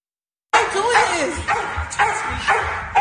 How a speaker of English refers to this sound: A man who was going through a mental health crisis was aggressively arrested by the police. And then they told the dog to bite him.